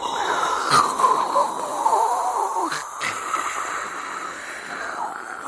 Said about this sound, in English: Here's 10 minutes of white noise.